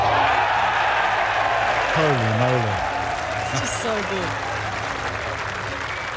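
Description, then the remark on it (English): A large golf crowd roars and applauds in a dense, sustained wash of clapping and cheering that fills the whole stretch, while a voice speaks excitedly over the top partway through. “That long birdie putt, or spectacular hole out, made all the more sweet when there's a crowd to roar in delight.”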